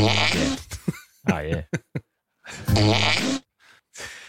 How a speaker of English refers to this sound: That was a waiter farting in front of Paul Blart, Mall Cop 2 family. Yeah. Was it a whoopee cushion or something? Or he just got him? Good fart.